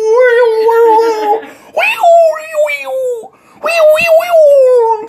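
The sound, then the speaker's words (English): A human voice imitates whale song with long, wavering, moaning tones that swoop up and down in pitch, sung in three sustained phrases with brief pauses between them. “So that's not how a fucking whale sounds.”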